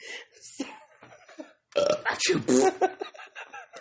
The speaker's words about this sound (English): My poll question here is, do you sneeze in your sleep? Does anybody know this? Or can you do the burp snort in your sleep?